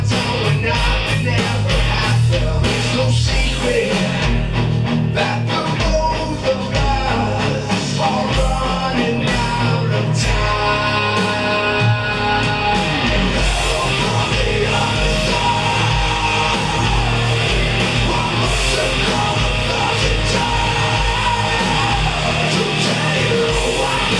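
A heavy metal cover song plays loud and dense throughout, with distorted guitars, pounding drums and a soaring guitar solo line over a steady driving rhythm, with no talking.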